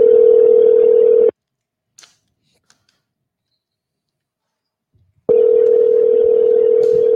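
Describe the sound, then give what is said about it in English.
A phone call to Dap Sugar Willie rings out at night: a loud, steady electronic ringback tone sounds, stops for a few seconds of near silence with faint clicks, then starts again, with no one answering. “Man, ain't nobody picking up the phone tonight.”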